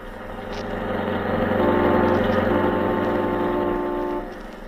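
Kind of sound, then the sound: vehicle, car engine running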